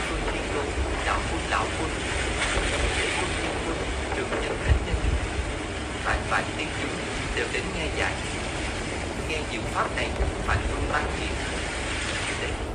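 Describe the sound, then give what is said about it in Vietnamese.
Natural sea wave sounds mixed into a recording: waves rush in a steady, unbroken roar, overlaid with a harsh, crackling hiss of interference and scattered faint clicks. No one speaks. “Có nghĩa là không ghép tiếng sóng biển được. Tức là bình thường nghe tiếng sóng biển thì năng lượng rất là mạnh”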